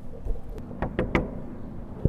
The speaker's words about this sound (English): I see a familiar sign on the outside of a huge white tent with a door in front. I guess I'm gonna knock.